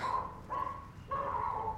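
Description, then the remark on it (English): A small chihuahua-mix dog barks in three quick, high-pitched, drawn-out yaps, fairly loud, with no one talking over it. “Ugh, I don't know, some sort of chihuahua mix. It's possessed.”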